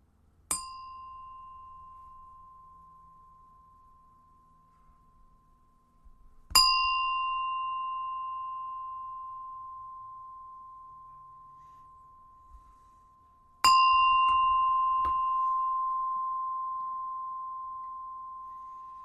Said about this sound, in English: Okay. I'm going to ring my bell. I have a bell.